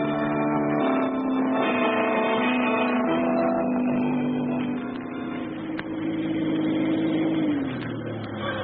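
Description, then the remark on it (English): A car engine hums steadily as the vehicle drives along, its pitch rising and falling slightly, then winding down near the end as it slows to park. No voices are heard. “Park the car right here.”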